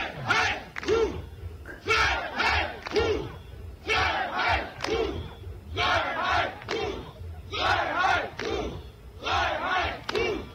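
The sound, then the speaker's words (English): Thousands of protesters in Vienna, Austria, demonstrating against forced vaccinations, chant "Freiheit" (freedom) in loud, rhythmic unison, repeating it roughly every second or two in bursts of shouting voices over a constant crowd roar. “This is Vienna, Vienna over the weekend, thousands and thousands of people protesting against forced vaccinations.”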